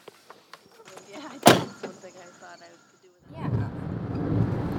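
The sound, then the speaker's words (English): Someone climbs into a car: a few light clicks and rustles, then a single loud, solid door slam, followed by a steady low rumble as the car runs. “We're going, getting in the car, getting ready to leave.”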